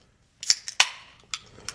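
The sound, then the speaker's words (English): The first beer can of the session cracks open with a sharp metallic pop and a short hiss of fizz, set among a few quick clicks and a smaller tap near the end. No one speaks. “And crack the first beer.”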